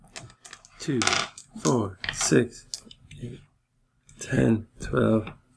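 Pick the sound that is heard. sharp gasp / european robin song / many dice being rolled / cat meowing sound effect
many dice being rolled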